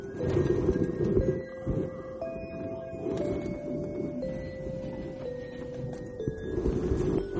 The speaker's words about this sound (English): Oh, wow, that did not sound good. My car is breaking down. That's too old.